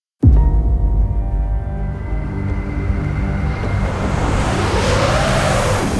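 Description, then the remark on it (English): A car engine drones steadily after an abrupt start as a lone car climbs a snowy mountain road, its low harmonic hum holding loud and even, with a rising and falling whoosh of tires and wind layered over the motor. “A lone car wending its way up a majestic snowy mountain.”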